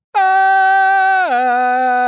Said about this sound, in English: Now, that restored foghorn probably sounds a little something like...